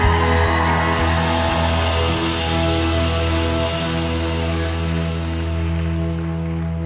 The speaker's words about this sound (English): Well, give Jesus a great big hand clap at this women's conference.